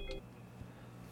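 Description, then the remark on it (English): A short electronic phone beep from an incoming call sounds once at the start, faint, then fades into a low steady hum with no voices. “All right, so we got a phone call there at the end.”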